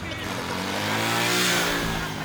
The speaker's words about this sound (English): sabotaged by an approaching group of men on scooters speaking Italian